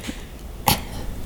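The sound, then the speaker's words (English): A single short cough bursts out once midway, sharp and fairly loud, with quiet room tone before and after and no talking. “Keep wanting to cough.”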